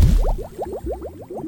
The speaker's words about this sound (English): As Osric shakes their hand, soap bubbles stream out of their pointer finger.